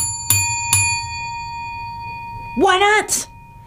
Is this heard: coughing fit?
no